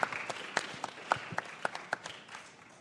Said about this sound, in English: So if everyone wants to give a round of applause for our panelists, we'll get everything started.